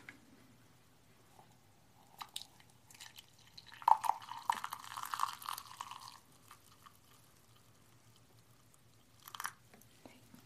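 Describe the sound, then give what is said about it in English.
Water pours into a teacup holding green tea, a soft, steady trickle lasting a few seconds, with light taps and handling noises before and after. “And we pour.”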